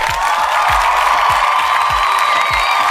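A loud, continuous wash of crowd cheering and applause with whoops on an HB Radio show, steady throughout, while a deep thump pulses underneath at a regular beat, about every half second.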